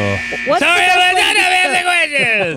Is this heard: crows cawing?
no